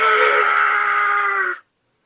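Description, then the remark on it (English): A voice imitates a female fox's scream: one loud, harsh, drawn-out shriek lasting about a second and a half at a steady high pitch, then cutting off into silence. “And having been in the scouts myself, I have heard female foxes calling it barn owls, foxes, barn owls calling it. It does sound like that, but it's in short bursts.”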